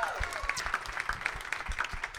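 An audience breaks into a round of applause, a dense, steady patter of many hands clapping at once, fairly loud and sustained throughout with sharper claps popping out of the wash.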